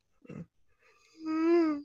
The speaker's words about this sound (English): I'm yawning.